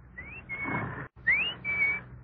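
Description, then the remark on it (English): A person whistles an imitation of the bird that jumps out of a clock to tell the time: two short phrases, each a rising slide into a steady high note, split by a brief pause, clear. “My father had a clock that told the time with a bird jumping out. The bird whistled, like this.”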